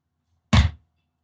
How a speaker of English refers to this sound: All right, now I'm opening the envelope with my shears, as you can hear.